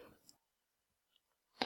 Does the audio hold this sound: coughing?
no